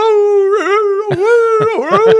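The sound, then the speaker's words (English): A voice imitates a dog's howling bark: a loud, sustained, wavering howl broken by several sharp, yelping bursts near the end, with nothing else around it. “What's her bark sound like?”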